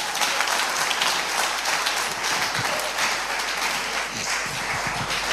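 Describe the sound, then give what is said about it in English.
An audience claps steadily, a dense wash of many hands sustained and loud throughout the full five seconds, with no voices rising above it. “Are you clapping?”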